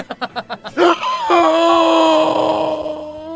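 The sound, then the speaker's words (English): The character Ozymandias performs a dramatic gasp: a quick run of short, choppy breathy bursts, then a long, loud, drawn-out vocalized cry that trails off slowly, alone. “In the distance, you hear Ozymandias gasp.”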